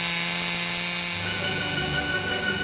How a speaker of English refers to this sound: And here's a bowling pin and a chainsaw. Let me start it up here.